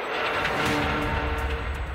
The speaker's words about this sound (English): So there's a lot of gravel and rocks and stuff that have been thrown up underneath the car, so you're hearing a bit of that hitting the bodywork as well. It's pretty cool.